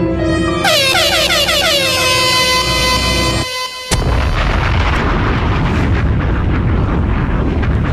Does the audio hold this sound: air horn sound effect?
yes